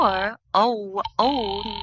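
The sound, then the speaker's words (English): A telephone call to Murray Hill 40098 rings on the other end with a buzzy, harmonic tone in three bursts separated by brief gaps. The ringing is fairly loud, with no one talking. “Ringing Murray Hill”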